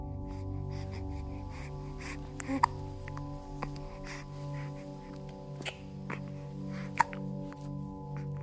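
A baby hiccups softly a few times at irregular intervals, small sharp catches over a steady low background hum, with no talking.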